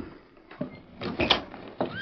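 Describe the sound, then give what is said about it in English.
A door is pushed shut with a creaking hinge and a few dull knocks and clunks, with no one speaking. “Shut the door.”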